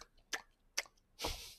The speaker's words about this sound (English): Just sitting around chewing on glue.